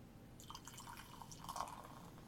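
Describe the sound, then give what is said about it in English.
A Uinta Brewing Season Pass vanilla porter, a clear brown beer, is poured into a glass, forming a khaki-colored head of tiny bubbles: a soft continuous splashing and gurgling with faint fizzing bubbles, fairly quiet, with no voices. “Guys, I love porters this time of year. I'm going to pop this top. Oh, my top. Nice. And the pour.”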